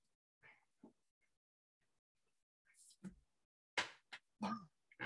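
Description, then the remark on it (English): A sleeping dog whimpers and yips while dreaming: a few soft, muffled whines, then a cluster of sharper, louder squeaky yelps. “My dog's having a dream.”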